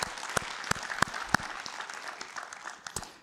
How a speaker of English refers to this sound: So round of applause for those things that God is doing.